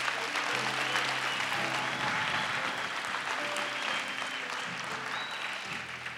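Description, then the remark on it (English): A large crowd claps steadily for several seconds to applaud pastors, the dense applause holding a constant loudness, with a faint low hum and occasional brief tones underneath. “Clap for these wonderful pastors.”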